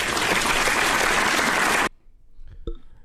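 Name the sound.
applause sound effect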